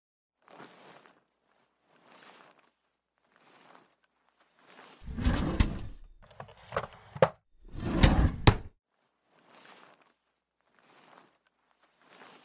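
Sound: drawer being opened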